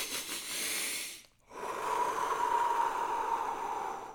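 Two airy breaths during deep breathing, with no talking: a short rush of air, a brief pause, then a long, steady inhale through the nose with a faint whistling edge that holds for nearly three seconds.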